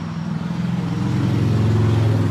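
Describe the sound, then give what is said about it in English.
A heavy truck rumbles past outside, its deep engine drone steady and loud, with low harmonic tones rising slightly as it moves along the road. “Loud truck.”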